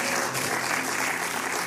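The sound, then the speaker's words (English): An audience in the second sanctuary gives the Lord a steady round of applause, dense overlapping clapping that stays loud and even throughout without any voices standing out. “Somebody in the second sanctuary, give the Lord a round of applause right now.”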